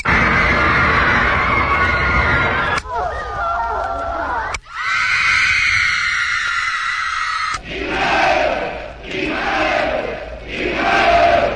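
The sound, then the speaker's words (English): A loud recorded crowd roars and shouts, played from a record on a 'screaming machine' meant to replace a teenage audience, with abrupt cuts between sections of massed yelling, wavering cries, and finally surging, rhythmic swells of cheering. “Whoops, wrong crowd.”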